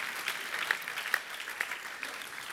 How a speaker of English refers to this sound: you can clap. You can clap in church.